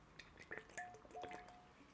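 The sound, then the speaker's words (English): Someone drinking water: a few soft, wet gulping and dripping sounds in quick succession, quiet and without any talking. “All right, I'm drinking some water, a little dehydrated.”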